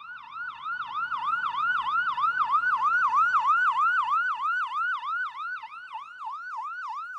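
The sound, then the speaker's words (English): An ambulance siren wails in a fast, continuous up-and-down yelp, loud throughout, with a faint rumble of road traffic underneath and no talking. “Yes, it came by ambulance.”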